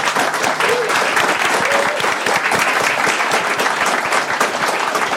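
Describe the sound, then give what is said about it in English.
Sustained audience applause for the guests at Microdots: a dense, steady wash of many hands clapping at a loud, even level for several seconds, with faint voices mixed in. “Before we go, I want you to give our guest a huge round of applause.”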